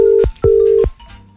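A telephone ringback tone from an outgoing call: a steady, clear hum sounds twice in short pulses, with faint clicks on the line, then drops away into quiet line noise.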